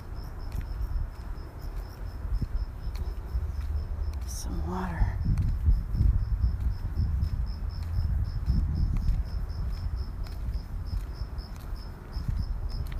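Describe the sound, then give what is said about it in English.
A steady, rapid pulsing of crickets chirps throughout over a low background rumble, while a person speaks briefly near the middle. “The crickets heard me coming.”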